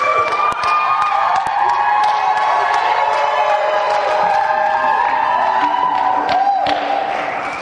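A crowd cheers and claps steadily as a speaker comes up to minister at a church gathering, with whoops and high shouts rising over a dense wash of applause that stays loud for the whole stretch before tapering slightly at the end.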